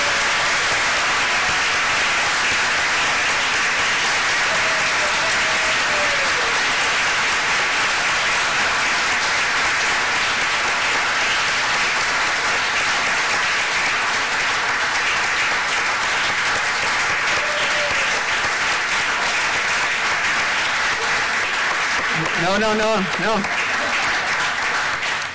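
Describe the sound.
A hearty round of applause fills the whole stretch, dense, steady clapping from a crowd that stays loud throughout, with a brief voice and a few cheers rising near the end.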